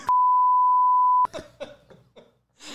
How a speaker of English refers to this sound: I think you're going to have to bleep that word. I think so. At least five times. Which word? The word where the dolphin the person. You're going to have to bleep that.